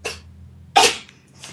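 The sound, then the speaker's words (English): A cat sneezes: a quick breathy burst, then a louder sharp sneeze, and a faint third one trailing at the end, with no talking. “I have a sneezy cat. Is that sneezing?”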